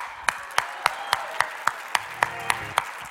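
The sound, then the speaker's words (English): Steady, rhythmic hand clapping in praise to God, roughly eleven sharp claps evenly spaced about a quarter second apart, ringing out over a murmuring crowd and faint scattered applause in the background. “You're clapping, you're drawing attention to God.”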